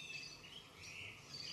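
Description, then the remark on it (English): Faint birdsong outdoors around a house in Australia: thin, high chirps and whistles blend into a steady background chorus for the whole moment, with no voices present. “She lives in a house surrounded by birds in Australia.”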